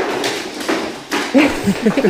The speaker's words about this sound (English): Stop playing with these bones, bro. Oh, my God, this dog. I already confiscated 2 bones. She's so loud.